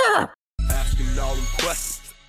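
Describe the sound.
A person does a loud, close vocal impression of a horse neighing, with a quick descending whinny, a brief pause, then a longer wavering, fluttering neigh that trails off.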